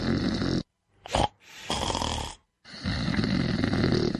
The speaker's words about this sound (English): Snoring. It's not funny, and it's definitely not normal. It's actually a sign that you're not breathing properly while you sleep, and you're probably ruining your partner's sleep as well.